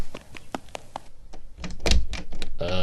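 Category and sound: household object, door being locked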